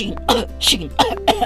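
A fairly loud series of four or five short, rough coughs and throat-clearing bursts, coming in quick irregular succession with brief gaps between them, no talking.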